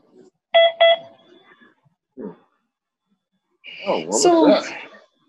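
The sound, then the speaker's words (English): A phone notification chimes with two quick, bright beeps in close succession, fairly loud, followed by a pause and then a person speaking. “That was your phone going off? That made that funky noise?”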